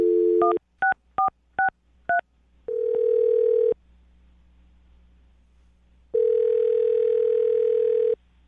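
A telephone number being dialed to call someone: a steady dial tone gives way to a quick series of four short touch-tone beeps, followed by longer ringback tones separated by a pause of silence, clear with no voices.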